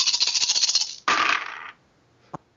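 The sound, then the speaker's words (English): A handful of eleven dice, rolled during a tabletop game, rattles and clatters across a hard surface, first as a quick run of small clicks, then a louder scattering tumble that settles, followed by one last faint click. “Using willpower plus 5 counterspelling dice. 11 dice.”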